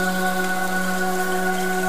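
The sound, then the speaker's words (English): Steady, soft rain patters continuously in a gentle hiss, blended with a sustained, calm musical drone holding several steady tones underneath. No one speaks. “Now let's focus on the sound of the rain.”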